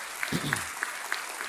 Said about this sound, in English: Can we just give a cheer for 2,000 almost first-time givers?